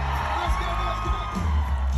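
A dense crowd cheers and whoops continuously, a loud, sustained wall of shouting voices with scattered higher yells rising above the roar for the full two seconds.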